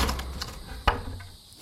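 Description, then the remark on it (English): A hostel door being kicked in: one sharp, heavy crash lands mid-clip over a low rumble, then quickly fades, leaving a faint hiss. No one speaks. “So they don't see me kick in the door of the hostel.”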